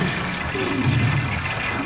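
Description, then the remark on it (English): A toilet flushes helmet-like devices down in a steady, rushing wash of water that fills the whole short moment, even in loudness, with no voices. “Better flush a couple more of these helmet things for good measure.”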